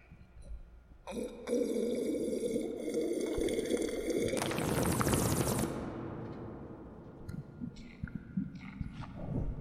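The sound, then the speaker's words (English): Someone takes a long sip from a can of Rockstar energy drink: a sustained fizzy, hissing slurp of liquid that swells loudly in the middle, then fades into a few softer gulping sounds. “First sip of the day.”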